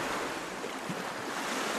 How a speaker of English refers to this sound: The simple beauty of it, the ruggedness, the sound of the sea, constant when you're in the village of Waterville.